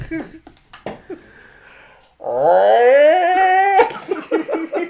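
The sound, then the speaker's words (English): A person imitates a Bigfoot call, modeled on a cow in heat, with one loud, sustained howl that rises slowly in pitch for about a second and a half, set between brief bursts of voices and laughter. “Can you do a Bigfoot call?”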